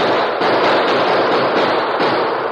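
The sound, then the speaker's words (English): A loud, dense final burst of gunfire from attackers fleeing over the prairie, with shots crackling together into a continuous noisy roar for a few seconds, harsh, with no one speaking. “With a final burst of gunfire and with ear-splitting whoops, they fled over the prairie toward the shelter of a wooded hill beyond.”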